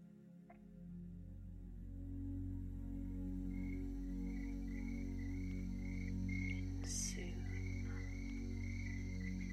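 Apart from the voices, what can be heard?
crickets chirping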